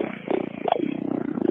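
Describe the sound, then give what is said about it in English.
A person's voice imitates an animal, holding a low, rough bellow that slides into a gravelly growl, sustained and fairly loud throughout with no other talking. “Ooh, I like the bellow that he held right before the growl.”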